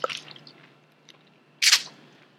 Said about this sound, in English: Excuse us, we're just going to have a glass of water.